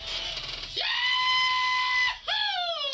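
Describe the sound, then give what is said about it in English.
A loud, high-pitched rebel yell whoops up and holds for over a second, then breaks into a second shorter, falling cry. It sounds like a recorded playback, with no talking over it. “that is the actual real Bo Duke”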